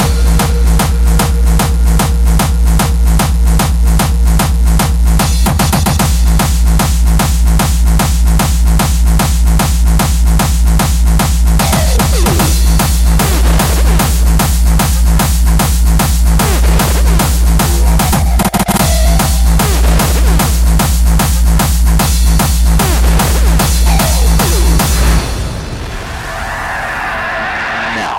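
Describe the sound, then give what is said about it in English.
A loud hardstyle beat, built up as a demonstration from a hi-hat loop, claps and snare drums, pounds away with the heaviest distorted bass drums in a fast, steady rhythm. Layered percussion runs on top, and after about 25 seconds it breaks off into a brief noisy wash. “And then, add your heaviest bass drums.”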